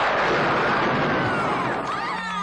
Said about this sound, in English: Stand and fight, or run. Use your lightning bolt.